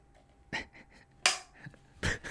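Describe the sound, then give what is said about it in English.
A single sharp hand clap for syncing, loud and crisp, surrounded by a couple of shorter, softer bursts over a faint background hum. “I mean, then we're not going to show me doing the marker, right?”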